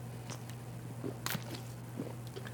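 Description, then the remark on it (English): Someone takes a quick swig of water, with faint gulping and a brief bottle rustle over a steady low electrical hum; no one speaks. “In the AFC East, I know, hold on, let me take a swig of water really quick because this is going to be a long talk here.”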